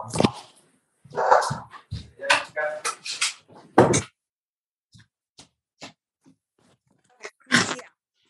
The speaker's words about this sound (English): Let me close the door real quick. Sorry.